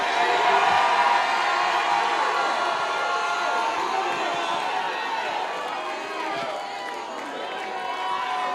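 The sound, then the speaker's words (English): A church audience shouts and cheers continuously, a dense wash of overlapping voices and whoops that stays loud throughout, easing slightly in the middle before swelling again. “And we shouted about it.”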